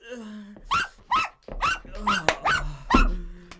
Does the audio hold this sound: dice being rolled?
no